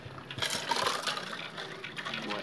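Water pours steadily into a container, a continuous splashy trickle lasting a couple of seconds with no one speaking.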